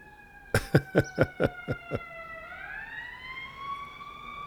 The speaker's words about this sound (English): Here comes another siren.